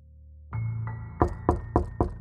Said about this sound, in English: A knock sent vibrations through the room, and Tyler met Kelsa at the door.